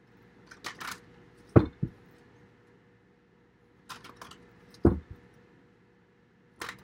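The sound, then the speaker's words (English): Tarot cards being shuffled and one drawn to close out a reading: brief papery flicks followed by a sharp slap, the pattern repeating twice with pauses between, then one last flick at the end. No one speaks. “All right, Capricorn, I'm going to get one more card and close out your reading.”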